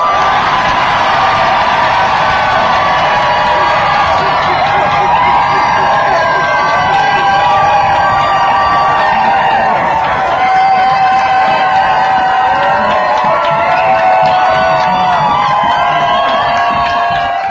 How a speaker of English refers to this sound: And finally, this is the response from the crowd when the compere shouts the name of the girl who preceded me.